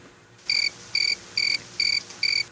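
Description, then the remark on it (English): Five evenly spaced cricket chirps played as a sound effect from a soundboard, each a short bright trill with a clear pause between, heard alone and fairly loud against a quiet background. “It wasn't, but the crickets ended.”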